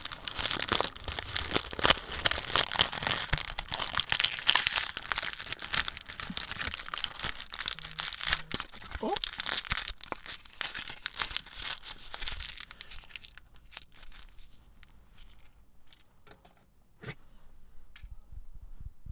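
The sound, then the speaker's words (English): A chocolate wrapper crinkles and tears open next to the mic, in a long stretch of dense, crackling rustles, then quieter scattered crinkles and small clicks trail off toward the end. “And open next to the mic and put it in your mouth next to the mic.”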